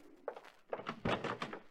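A door is opened with a series of soft thuds and clunks, quiet, with no voices over it.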